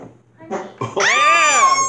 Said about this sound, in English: Oh, that was a live action fart. That was a real live action fart.